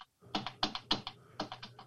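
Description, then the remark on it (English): Quick, uneven keystrokes clatter on a computer keyboard as someone types out a calculation, several bursts of typing with brief pauses between them, fairly quiet, with a low steady hum underneath. “Are you actually typing or just hitting your keyboard?”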